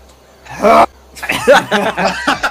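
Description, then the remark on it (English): A voice imitates gagging and choking: one loud, strained retch, a brief pause, then a string of sputtering, croaking gags and coughs. “And Jill started gagging and choking. We're going to need those gagging and choking sounds.”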